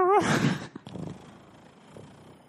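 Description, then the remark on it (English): Someone imitates a cat's purr with their voice, opening on a short wavering tone and then a loud, breathy rolling burst that fades into a soft, low, uneven rumble. “I've got the purr. I can do the purr.”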